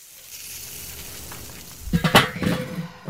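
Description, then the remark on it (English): Steady crackling sizzle of hot dogs and buns on a grill, a constant hiss that swells near the end with a few louder pops and scraping clinks of a utensil. No one speaks. “In between taking some dogs off the grill and putting the buns on the grill, I noticed there was a new voice message on our tip line.”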